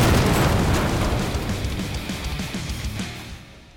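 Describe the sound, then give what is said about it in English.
A loud explosion goes off right at the start, followed by a deep, rumbling roar that slowly fades over a few seconds. There is no talking. “I don't know what makes canoeing extreme, but I assume it must have explosions!”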